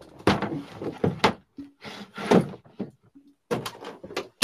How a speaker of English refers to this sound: Alright, I'm back. You went through a doggy door. Yes, a very real dog door.